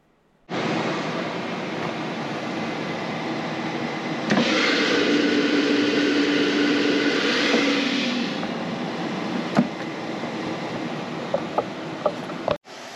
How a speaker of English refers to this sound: And there it is, sizzling, beautiful tempeh bacon. Look at that. Oh my gosh, you see all the liquid has gone into it. It's just gorgeous, isn't it?